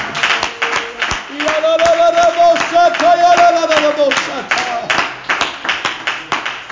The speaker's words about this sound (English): Clap your hands and worship the Lord one more time in this house.